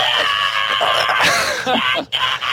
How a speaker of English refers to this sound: I just love the start of this song. He's just screaming his head off for like 10 seconds. It's the best start to the song.